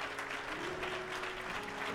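An audience claps steadily in praise of God, a dense, continuous wash of many hands with no pauses, moderately loud and without any voices standing out above it.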